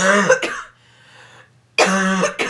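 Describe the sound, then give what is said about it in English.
Two bursts of harsh, raspy coughing, each a quick double hack, separated by a second of near silence. “We're editing out coughs. We should just leave in one for everybody can see how painful they are.”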